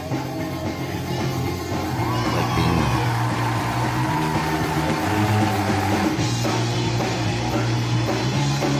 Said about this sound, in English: What's that crowd, yo? That's out of control.